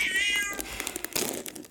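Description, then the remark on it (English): A cat, Kitty-chan, lets out a short, high-pitched meow, followed by a brief rustling scuffle; no one speaks. “Kitty-chan, let me in.”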